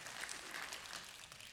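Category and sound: crowd, audience round of applause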